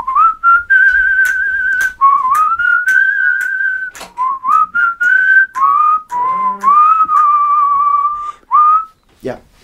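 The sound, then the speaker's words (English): A person whistles "When the Saints Go Marching In", a lively, bouncy jazz tune, the melody running in short, clear phrases with brief breaks between them, loud and bright, ending with a quick downward slide. “I'm whistling when the saints go marching in, bring those positive vibes in.”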